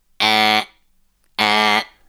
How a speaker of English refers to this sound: That's the noise. That's the noise. We heard an Amber Alert. Now, you might have heard of an Amber Alert before, you know, if a... They've introduced them in England recently, actually, but they've had them in America for ages.